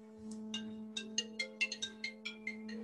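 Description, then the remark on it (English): A mobile phone ringtone plays a quick run of bright electronic beeps, about a dozen evenly paced tones at moderate volume over a steady low hum, with no talking. “Sorry about that. I should have switched my phone off.”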